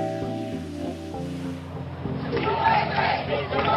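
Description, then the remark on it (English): A large crowd of protesters chants "USA" together in unison outside a Worcester funeral home that accepted the body of Tamerlan Tsarnaev, the massed voices starting steady and tonal, then swelling into a louder, rougher roar of shouting outdoors. “The crowd chanted USA and sent him back, outraged after a Worcester funeral home accepted the body of Tamerlan Tsarnaev, transferred early Friday morning.”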